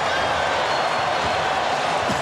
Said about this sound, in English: The crowd goes nuts, and Carter is just strutting around and puffing out his chest.